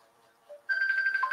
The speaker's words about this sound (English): And my other phone is ringing. See, he rings me in the song.